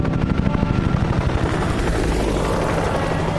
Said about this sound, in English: Oh, come on! First the Happy Days guy gets a chopper, now you? I'd like to know why these helicopters keep showing up and why I can't fly out on one of them.